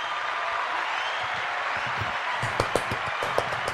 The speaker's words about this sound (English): And my guy is about to graduate and go to fourth grade. Yes. Round of applause.